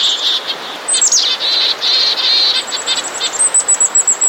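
A dense chorus of high, rapid bird chips and calls from several songbird species mobbing together in alarm, ending in a quick regular series of sharp notes; no talking.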